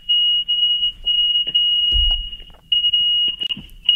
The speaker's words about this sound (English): No, it's a sewage pump.